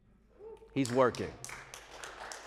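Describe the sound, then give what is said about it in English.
During a Sunday morning church service, a short burst of voice is followed by a scattered handful of light, polite claps from the audience. It is a thin golf clap of soft, uneven slaps rather than full applause. “I got a golf clap with that one, but all y'all, come on now.”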